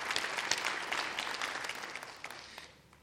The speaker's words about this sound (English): This church deserves a round of applause.